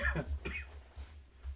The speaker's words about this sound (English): So he's coughing up lung.